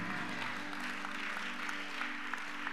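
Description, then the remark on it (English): An audience applauds the men, many hands clapping together in a dense, steady wash of claps at moderate volume, with no one speaking. “Clap for the men.”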